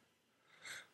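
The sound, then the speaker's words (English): A single short sneeze bursts out near the end, a sharp, breathy, hissing blast after a moment of quiet background noise. “Bless you. Sorry.”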